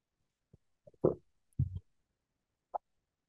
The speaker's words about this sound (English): In Matthew chapter 7, verse 21 through 24, I'll give you a moment to turn there while I take a sip of hot tea.